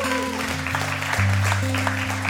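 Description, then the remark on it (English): An audience claps steadily throughout after a prayer, a dense wash of applause layered over sustained, loud keyboard or organ chords that shift in pitch beneath it. “Will you give them a round of applause?”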